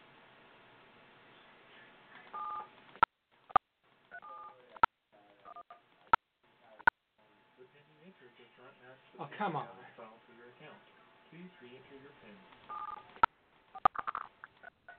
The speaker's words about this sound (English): I'm sorry, but I did not hear you press at least 4 digits of your PIN number.